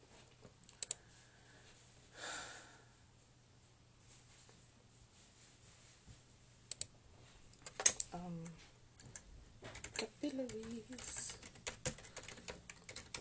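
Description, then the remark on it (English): Soft, irregular clicking of keys on a computer keyboard as someone types in capital letters, tapping in short bursts with pauses between them, while a person speaks briefly over the later keystrokes. “Why am I typing in caps?”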